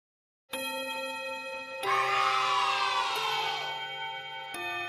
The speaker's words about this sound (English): And that's the end of class bell.